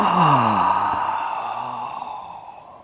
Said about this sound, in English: You are asked to notice that yawning.